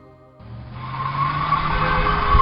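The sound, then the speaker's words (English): A car swoops by with a rising engine roar and a thin tire squeal, growing louder over a couple of seconds as it skids past close to the curb. “Car's clipping that close to the curb, bound to kill somebody.”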